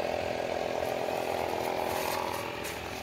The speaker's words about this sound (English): I'm airing up my tire right now, too.